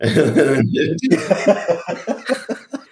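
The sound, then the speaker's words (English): A person imitates violent coughing: a drawn-out voiced sound, then a quick run of harsh, rhythmic cough-like bursts, fairly loud. “And then this guy just started coughing violently.”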